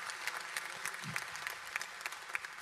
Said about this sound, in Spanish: Y ese día, amén, yo creo que eso merece un aplauso.